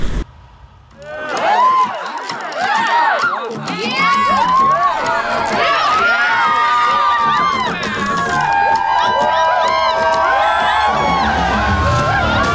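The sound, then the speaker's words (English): A large crowd cheers and shouts continuously after a rock song, with overlapping whoops and excited voices filling the space at a steady, loud level from just after the start to the end. “The crowd wasn't satiated by only one song.”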